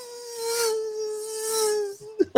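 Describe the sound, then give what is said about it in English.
A steady, droning buzz like a small fly, holding one mid-pitched tone with a thin, reedy edge and gently swelling in loudness, ending with a couple of brief knocks. “It sounds like a little fly coming around.”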